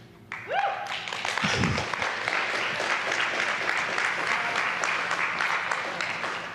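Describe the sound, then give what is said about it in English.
A church audience breaks into sustained applause during a sermon on a psalm, dense overlapping hand claps holding steady at a fairly loud level for several seconds, with a brief voice and a rising tone at the start. “It says, clap your hands.”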